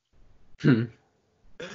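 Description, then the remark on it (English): A single short cough or throat-clear, fairly loud, bursting out of near silence, followed after a brief pause by the start of someone speaking. “Just cough once if she is.”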